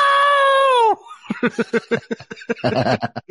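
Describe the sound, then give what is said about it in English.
A woman lets out a long, high-pitched screech, then breaks into loud, choppy sobbing in quick gasping bursts, distraught, after being called home. “And that's when the screeching reaction happened.”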